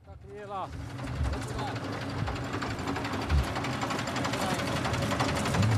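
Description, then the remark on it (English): A truck engine rumbles steadily as the vehicle pulls over, a dense, continuous drone that grows slightly louder toward the end, with a brief wavering tonal sound at the start. “The truck has just pulled over.”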